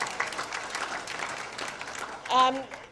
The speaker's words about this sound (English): if you'll applaud for them.